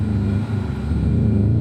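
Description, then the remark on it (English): Three heavy municipal street sweeper trucks slowly back into their bunkers in a city services parking lot late at night in winter, their engines producing a loud, steady low drone that holds without pause, with no voices present. “For some inexplicable reason, three street sweeping trucks from our local municipal services had returned from some unscheduled late night emergency cleanup call and were slowly backing into their little bunkers inside the city services parking lot.”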